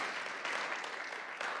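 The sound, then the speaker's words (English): An audience applauds to thank a couple for decades of ministry service in Missouri, a dense, steady wash of many hands clapping at once with no single claps standing out, holding at an even, fairly loud level throughout. “And so can we give them a round of applause as a way of saying thank you for their service to our King?”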